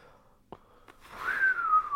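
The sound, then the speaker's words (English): A few faint clicks, then a thin, reedy whistle made through missing front teeth rises in and glides slowly downward in pitch, growing louder and holding steady for about a second, alone without any talking. “Missing his two front teeth, he continued on, now with a characteristic whistle.”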